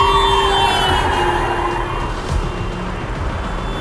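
Cars race toward and past on a road, driving in both lanes to get out of town, a loud, continuous engine-and-road roar with a steady siren-like wail layered over it; no one speaks.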